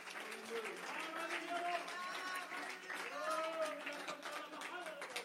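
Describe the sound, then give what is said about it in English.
An audience claps their hands to rejoice in the Holy Ghost at the preacher's call, a dense wash of hand claps running throughout, with several voices calling and shouting over the clapping. “Somebody clap your hands and rejoice in the Holy Ghost right now.”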